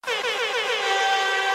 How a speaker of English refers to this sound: Okay, so there you've heard it. That's the buzzer gone off, and now we're at the fun part of the show.